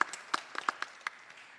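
Scattered clapping from a small audience, with a handful of sharp, irregular claps over a soft background wash that fades out after about a second.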